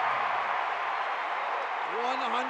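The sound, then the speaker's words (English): A large arena crowd at a Utah Jazz basketball game roars steadily, a dense wash of cheering and applause that stays loud throughout, with a few voices rising above the din near the end, as Donovan eggs on the crowd. “Donovan eggs on the crowd and they answer.”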